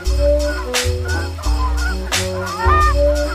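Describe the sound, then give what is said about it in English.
Loud giant Canada goose honks repeat in a steady series, several nasal calls overlapping over a low rumbling background, with no voices. “Let us hope that these wonderful birds continue to thrive, and that in the years to come, the prairie skies will resound with these familiar calls of the giant goose.”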